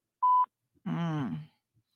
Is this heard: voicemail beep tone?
yes